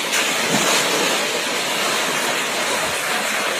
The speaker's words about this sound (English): And there really isn't any town other than the rushing water. Right. This is Lila, who is a poor little baby elephant who's stuck, and she can't get out.